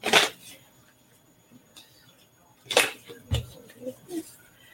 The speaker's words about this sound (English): I'm going to shuffle and pull a Garden Dragons card.